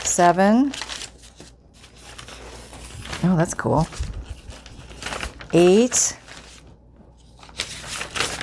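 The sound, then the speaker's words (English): Paper pages rustle and flip in quick, crisp bursts, shuffled and counted one after another, with a person speaking briefly between the sheets. “Let's count pages.”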